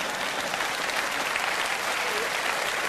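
Steady audience applause, a dense, even wash of many hands clapping that holds at a constant level for about three seconds, with no voices standing out.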